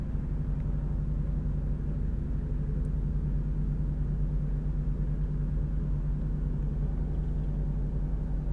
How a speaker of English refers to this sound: Alright, sorry about that, guys. There's a car being super sus. You guys have no idea. When I'm in, like, a dark parking lot, high as shit right now. Like, oh my god, there's another car?